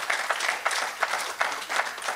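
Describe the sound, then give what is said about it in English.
An audience clapping their hands together, a dense crackle of many claps with recurring louder swells at a fairly steady pace, no voices over it. “Come on, clap your hands.”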